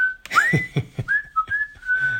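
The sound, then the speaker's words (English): Someone whistles a short tune, sliding between a few sustained notes, while soft low thumps tap along in a steady rhythm underneath. “And whistling.”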